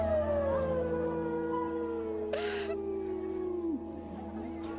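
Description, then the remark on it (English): A dog howls in one long, drawn-out wavering note that slowly slides lower in pitch, fairly clear and steady throughout, with a brief noisy rustle partway through. “Okay, I keep thinking it's a dog in the background.”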